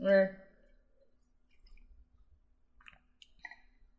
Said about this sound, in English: Oh, and let's just take another sip of this wine because I'm continuing to enjoy it and it's getting a little less reduced and more vanilla and lemon curd on the nose.